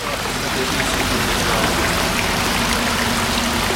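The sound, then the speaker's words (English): Steady, loud rush of water churning through automated, computerized purification equipment at a land-based reef and rainforest attraction, putting 5 million litres through seven types of mechanical and biological filtration every hour, with a low mechanical hum underneath, continuous with no voices. “And these are automated and fully computerized water purification plants and equipment.”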